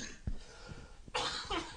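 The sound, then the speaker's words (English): A harsh, wet cough bursts out after a moment of low thumps, breaking into two rough hacks in quick succession with no talking. “I don't like that cough.”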